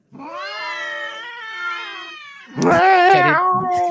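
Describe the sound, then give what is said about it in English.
Cats caterwauling while mating: a long, wavering, drawn-out yowl followed by a louder, harsher, more strained howl, with no talking over it. “Cat orgy.”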